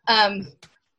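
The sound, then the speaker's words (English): A toddler lets out a drawn-out, high-pitched babbling vocalization, fairly loud, followed after a short pause by a brief second little utterance. “See, told you, juggling a toddler.”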